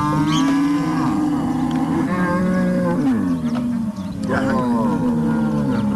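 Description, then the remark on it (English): Several cattle moo loudly and continuously on a ranch in Ghana's Central Region as they get ready to go out to graze, their deep, drawn-out calls overlapping with no pauses, like a whole herd calling at once. “It's time for them to go to the grazing. That's why they are making this sound.”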